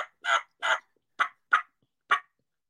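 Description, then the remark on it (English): A turkey call is used in a house, sounding a series of raspy, gobble-like bursts, about six short notes in an uneven rhythm with brief gaps between them, fairly loud and with no talking over it. “Hopefully your wife doesn't get mad that you're turkey calling in the house.”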